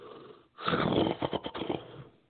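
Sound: yawning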